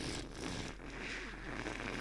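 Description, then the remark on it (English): A steady stream of liquid pours into toilet water for about two seconds, a continuous hissing splash at even loudness that sounds almost like static, with no voices. “Peeing in a toilet.”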